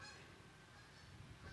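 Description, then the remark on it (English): Geese honk in a noisy, overlapping chorus, several birds calling at once with nasal, brassy cries that stay steady throughout. “The geese agreed.”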